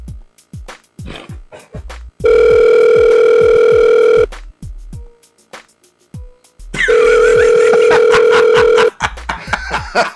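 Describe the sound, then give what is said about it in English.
Two long, steady ringback tones from an outgoing phone call, each about two seconds with a pause between, sounding loud over a background of sharp clicking and tapping. “That's him looking at my phone call saying, reject.”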